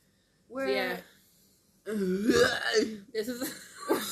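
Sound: burping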